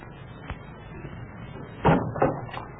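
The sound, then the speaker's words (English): A front door opens as someone arrives, with a handful of wooden clunks and thumps, a soft one first, then two or three louder knocks in quick succession. “Somebody's at the front door.”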